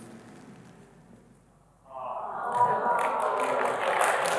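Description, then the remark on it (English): After a couple of seconds of low murmur, a crowd breaks into loud, dense applause for a woman who has just accepted a marriage proposal. The applause swells quickly and keeps going steadily to the end, with a few cheers mixed in. “I think the applause should be for her for saying yes, all right?”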